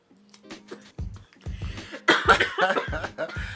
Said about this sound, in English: Yo, she's coughing, y'all, because the blizz is, like, the blizz is roaring.